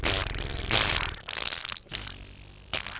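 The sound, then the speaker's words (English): Someone blows a wet, sputtering fart imitation into a microphone, simulating Donald Trump's flatulence. It is a loud buzzing raspberry broken into a few rough bursts with brief pauses between them. “Booze and Brews podcast, where we simulate Donald Trump's flatulence into microphones.”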